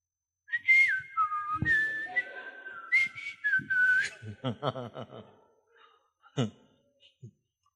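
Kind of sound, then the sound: human body sound, person whistling a tune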